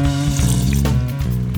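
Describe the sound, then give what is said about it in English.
Someone takes a sip of water up close, a steady, continuous liquid sound lasting a second or two, with no talking. “All right, let me grab a sip of water here.”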